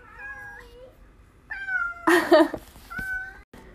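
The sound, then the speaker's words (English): A pet cat meows repeatedly in short, drawn-out calls, fairly loud, with a harsher, louder yowl in the middle and brief pauses between cries. No one speaks. “I think my cat's calmed down now.”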